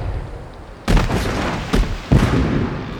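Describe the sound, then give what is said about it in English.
Cannon fire from a ship, firing cold shot to stove in a boat, booms three times, with heavy blasts rolling into a sustained low rumble and a rough, crackling wash of noise between the shots. “Galloway, stove that boat in with cold shot and leave his men in the water for the sharks.”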